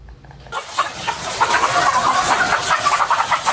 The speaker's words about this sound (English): These chickens are not crossing the road. With Taiwan's recent cold spell, they are staying inside their coop, where it's still too cold to lay their eggs.